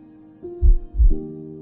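human heartbeat

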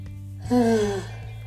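yawning

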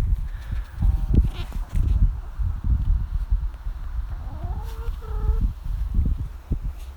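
hens clucking

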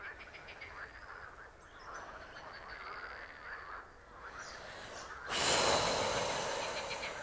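heavy exaggerated breathing

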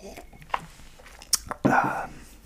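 sipping water

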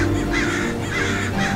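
crows cawing

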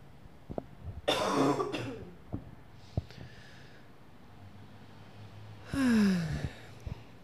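deep deliberate breathing

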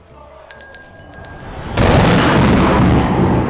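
thunder boom

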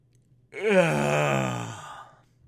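yawn

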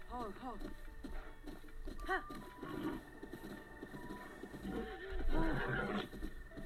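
horse neighing

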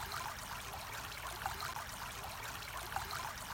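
flowing stream water

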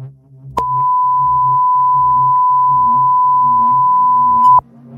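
cell phone beeping

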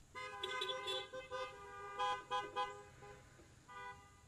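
car horns honking

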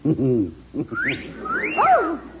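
parrot whistling

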